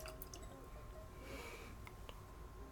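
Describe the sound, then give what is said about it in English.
Light whiskey from Cat's Eye Distillery, aged 13, 14 and 16 years, being poured into glasses: a quiet liquid trickle and splash swelling midway, followed by a couple of small drips or clinks, with no talking. “So I'm pouring these at the moment.”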